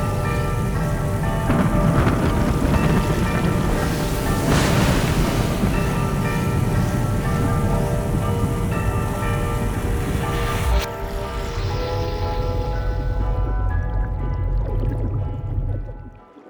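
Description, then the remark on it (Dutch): A loud, continuous roar of rushing water and wind churns steadily, dense and swirling, with a shift near the end before it fades out abruptly. “Het geluid wordt luider en luider totdat de hele glijbaan een alomvattend draaikolk is.”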